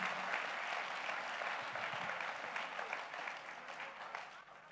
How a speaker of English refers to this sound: Are you clapping hands for Jesus, somebody?